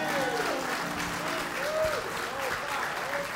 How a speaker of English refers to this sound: Let's give the pastor another round of applause.